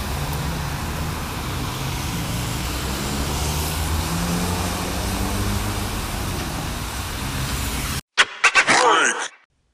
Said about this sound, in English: it's a rainy day. Not very pleasant out. I'm in a shelter. And just waiting get home. So yeah, there's a lot of people out here, a lot of cars. So yeah, just doing something different, seeing how it sounds. Just ambient sounds of Hamilton, Ontario.